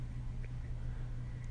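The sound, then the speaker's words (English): A steady low rumble of traffic at night, faint and continuous and quieting down, with only occasional cars, and a soft wash of background noise and no voices. “I'm hearing the traffic quiet down.”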